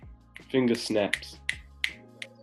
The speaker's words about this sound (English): Finger snaps. Everyone else is finger snapping, but they're muted.